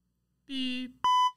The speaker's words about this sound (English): Beep. Yep, we caught my... Oh, we bleeped it just in time.